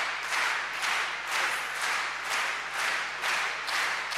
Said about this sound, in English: If I'm teaching you how to rewrite your CV, how to do this, by now you'll be clapping. Give me that clap again. Give me that one, yes. No, it's too fast. Start again. It's two, three. Yes. Yes.